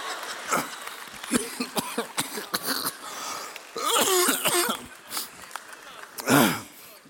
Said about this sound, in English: I literally have been coughing for about 5 weeks, but it kind of went away.